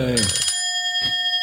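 A bright bell sound effect, played by pressing a button during a quiz, strikes once, its clear metallic tones ringing out and lingering for over a second, with a soft low thump partway through and no voices.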